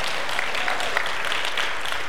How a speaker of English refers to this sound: Can I get one or two claps on that? Just one or two.